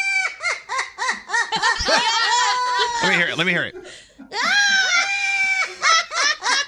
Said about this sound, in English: This is a parrot with a very evil laugh. It might sound like someone we know in this room.